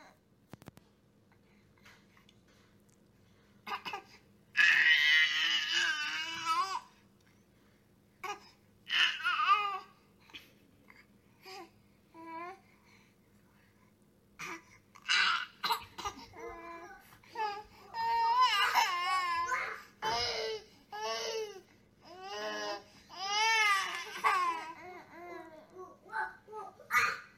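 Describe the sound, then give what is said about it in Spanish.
Two babies in a video alternate between babbling and short, wailing cries, their high-pitched vocal bursts coming in uneven spurts with brief pauses, over a faint steady background hum. “Es más, les traigo un video que quiero que observen para que se den cuenta también lo que ocurre con otro par de bebés.”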